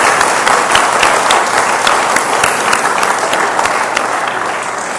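An audience applauds a costumed drama performance of Toy Story 3, many hands clapping in a dense, loud wash of crisp claps that holds for the full five seconds and only tapers slightly toward the end. No one speaks.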